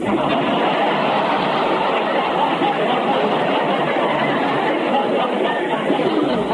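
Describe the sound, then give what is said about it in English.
A dense, steady babble of many voices talking at once from a crowd lined up outside a store waiting for it to open, with no single speaker standing out, holding an even, fairly loud level throughout. “they're getting ready to open the store and let the crowd in.”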